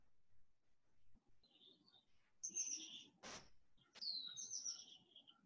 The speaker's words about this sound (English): I'm hearing the birds.